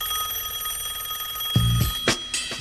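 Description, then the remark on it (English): A telephone rings with a steady, bright electronic tone, then a few short louder bursts near the end. It sounds fairly loud, with no one speaking. “Uh-oh, looks like my phone's ringing.”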